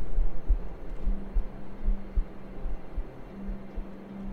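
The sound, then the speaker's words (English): A muffled, low heartbeat thumps steadily and fairly quickly throughout, set against a soft droning hum, with no voices. “There is a faint heartbeat. Just barely.”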